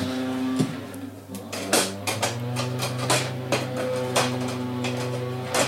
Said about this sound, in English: It's a man with a leaf blower literally right outside my window, which is really helpful.